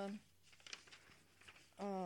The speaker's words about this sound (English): She's just going through her list, folks. Yes, that's the paper rattling you here.